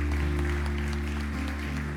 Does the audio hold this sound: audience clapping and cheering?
yes